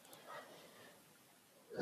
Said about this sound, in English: Excuse me. I'm so sorry. So sorry about the yawning.